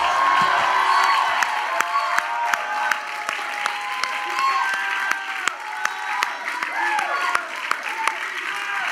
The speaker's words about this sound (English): Why don't we give Jesus a round of applause? How about that? All right, that was actually pretty lame. Why don't we give Jesus a real round of applause?